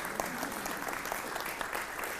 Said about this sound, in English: All those applause are for you